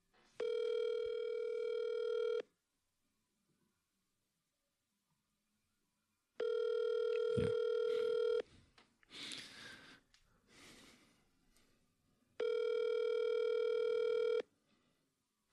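A telephone rings three times before going to voicemail, each ring a steady, buzzing tone lasting about two seconds with long silent gaps between, and a burst of rustling, scraping noise after the second ring.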